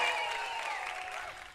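Steady, dense applause with a hint of crowd cheering, holding at an even level for over a second before thinning slightly at the end. No one speaks over it.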